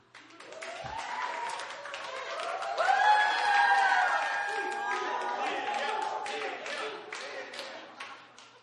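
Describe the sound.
An audience claps steadily for several seconds, a dense patter of many hands, with voices calling and cheering through the middle before the applause tapers off.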